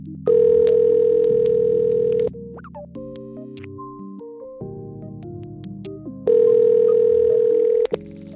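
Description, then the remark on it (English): Two long, steady ringback tones of an outgoing phone call, each about two seconds, separated by a pause, with soft background music playing underneath and between the rings. “So long as they pick up the phone.”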